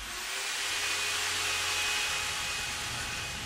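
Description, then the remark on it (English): A neighbour's power drill, used for DIY, runs steadily for a few seconds, a continuous high-pitched motor whine over a broad hiss, with no pauses and no voices. “He's sending flat parts for about 2 weeks because I started to drill and hasn't stopped for 2 weeks.”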